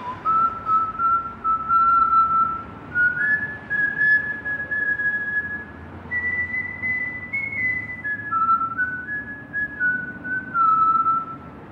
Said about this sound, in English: And then you hear that whistle.